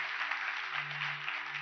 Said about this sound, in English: Come on, let's give them a hand clap today. Heaven is rejoicing.